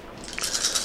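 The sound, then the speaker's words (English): Dice rattle and tumble across a hard surface in a quick run of small clicks and clatters, fairly quiet, with no voices over them. “And then I have my wiggle dice. Well, I already saw another 10 pop up.”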